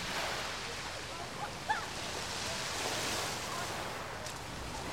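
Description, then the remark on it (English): Waves wash steadily over a shingle beach on the Brighton seafront on a sunny day, the pebbles rattling and clattering as the water drags back, a continuous rushing sound with no voices. “There's the waves. I like the sound of the rocks all clattering.”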